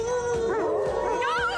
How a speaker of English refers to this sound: Quit it. You're gonna start a howl.